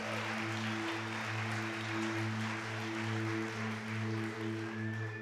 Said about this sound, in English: That was the patheticest golf clap for the word of God I've ever heard in my life.